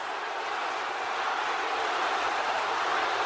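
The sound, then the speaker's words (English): A huge arena crowd chants together, their many voices merging into a loud, steady, unbroken roar that fills the whole stretch with no single speaker standing out. “Listen to that chant”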